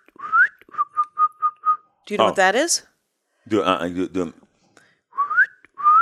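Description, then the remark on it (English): A person whistles an imitation of the call of a bird heard all the time in their neighborhood: a rising slide, then five short even pips at one pitch, followed by speech and another pair of rising whistled notes. “It is a bird that I hear in this neighborhood all the time.”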